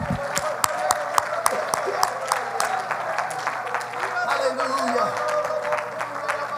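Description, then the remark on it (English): An audience claps their hands together in a loud, steady, roughly rhythmic beat that keeps going throughout, with a few voices calling out faintly underneath the clapping, giving praise to Jesus at a morning church service. “Clap your hands and give Jesus praise this morning.”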